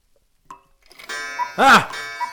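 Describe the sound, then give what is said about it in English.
A cuckoo clock calls: a short click, then bright sustained whistling tones with one loud swooping hoot in the middle, and a quieter note trailing at the end. “Oh, it's just a cuckoo.”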